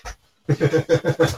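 A small dog pants in quick, steady bursts, about six rapid breaths after a brief pause, with no talking.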